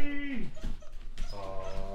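A puppy whimpers excitedly, letting out a long high whine that slides downward, then a short yip and another quavering, drawn-out whimper.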